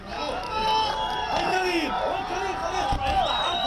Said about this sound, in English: In the occupied West Bank, crowds celebrated the reciprocal release of Palestinian prisoners from Israeli prison.